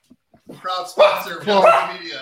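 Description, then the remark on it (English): A dog, Otis, whines and yips in a run of short, high, strained cries with a couple of sharper bark-like bursts, fairly loud, after a few faint clicks at the start. “Otis is not too happy about it. No, Otis is not thrilled.”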